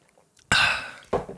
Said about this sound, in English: Let me have my coffee. Of course. Sip cheers. My water.